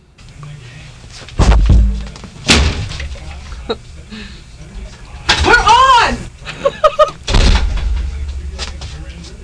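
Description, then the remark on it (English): A door slams shut with a loud thud, followed by more heavy bangs and clatter as people talk excitedly. “As I slam the door.”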